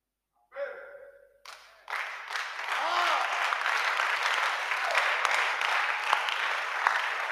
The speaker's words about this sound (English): Oh, hold on. Why are you clapping?